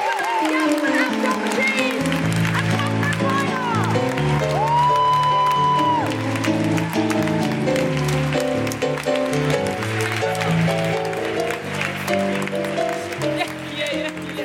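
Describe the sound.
An audience applauds and cheers steadily for about fourteen seconds: dense, loud clapping with voices whooping and shouting over it, holding strong throughout.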